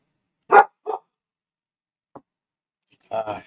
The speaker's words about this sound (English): That's Emmett's dog.